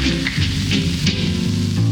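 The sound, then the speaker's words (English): A steady, dense wash of crowd noise on a 1965 live concert recording fills the whole two seconds, hissy and continuous like cheering or applause, with low tonal sounds murmuring underneath. “Oh, listen to that old-timey crowd.”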